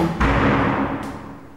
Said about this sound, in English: Did you hear the door banging inside?